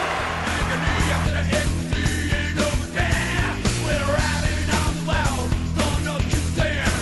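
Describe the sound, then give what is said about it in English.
A large arena crowd boos its own home coach loudly and steadily for about seven seconds, a dense, low, droning roar of many voices with occasional swells and brief dips. “It feels good to hear a coach get booed by his own crowd, right?”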